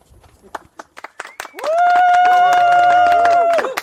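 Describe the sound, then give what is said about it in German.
A canned applause effect played as a performer's own applause: scattered, sharp hand claps for a second or so, then a loud, steady sustained tone that holds for about two seconds before cutting off. “Martin hat eigenen Applaus.”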